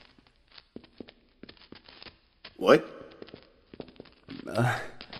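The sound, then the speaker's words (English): Soft, steady footsteps walking along at an even pace, fairly quiet, with two short bursts of a voice interrupting partway through. “I swear, I hear footsteps. And they aren't ours.”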